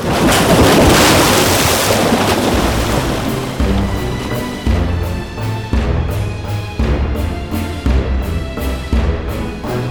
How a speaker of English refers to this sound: Immense waves soon formed, capable of reaching the sky. There was a spectacular tidal wave, a tsunami the likes of which had never been seen before.